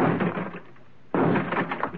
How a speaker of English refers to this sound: Stand away from the door. I'll have to blast the lock out.